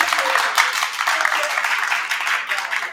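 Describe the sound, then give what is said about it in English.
A crowd applauds steadily, many hands clapping in a dense, continuous wash of sound that stays fairly loud throughout, with a faint murmur of voices mixed in, as an audience votes by applause on whether LeBron is the best basketball player ever. “By a round of applause, is LeBron the best player ever?”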